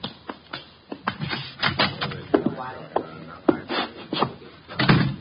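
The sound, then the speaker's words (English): A door is opened and shut, with a run of sharp clicks, knocks and rattles from the latch and handle, ending in a heavier thump as it closes. “The door, Chuck.”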